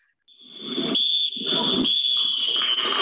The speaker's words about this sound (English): Does it involve any bells? Well, it depends on how you behave, doesn't it? Oh, so is it bad behaviour that's getting the bell? It depends. Is it when I don't listen to something you say? That would just be the bell would just be constantly ringing.